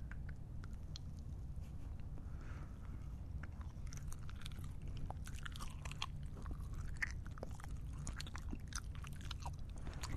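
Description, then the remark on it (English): Someone chews a crisp Zachary Thin Mint cookie, with irregular crunchy snaps and clicks repeating throughout, fairly quiet over a steady low background hum, and no talking. “So let's try the Zachary Thin Mint.”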